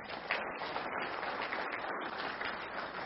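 A crowd claps steadily, a dense, even wash of many hands with no pauses and no voices standing out over the clapping.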